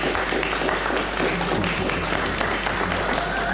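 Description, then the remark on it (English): Subdued applause after an election result declaration, a steady patter of many hands clapping at an even, moderate level for a few seconds, with faint voices murmuring underneath. “Quiet one, that one. They were clapping after each one, the ones I heard overnight.”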